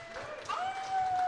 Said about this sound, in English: Another round of applause for them.